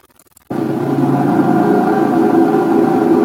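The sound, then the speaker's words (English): A heavy trailer truck engine rumble at an underground food storage facility cuts in abruptly after a brief quiet moment, then holds as a loud, steady drone with a low mechanical hum and no voices. “I told you that there was a place that had upwards of 600 trucks, trailer trucks, going in and out of an underground storage facility daily.”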